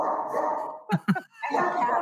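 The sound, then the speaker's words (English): Two sharp dog barks in quick succession at someone at the door stand out midway, loud, set against a continuous background of muffled noise before and after. “Dogs are so inconsiderate when it comes to podcasting.”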